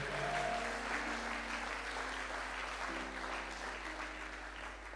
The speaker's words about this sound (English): Somebody clap your hands and shout a big amen.